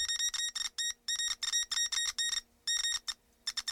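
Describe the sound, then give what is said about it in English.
Morse code beeping: a bright electronic tone pulses in quick short and long bursts with brief gaps, clear, with no voices; a message sent by tapping a copper wire with a rusty nail. “I've discovered by tapping the copper wire with a rusty nail, I can broadcast a message via Morse code.”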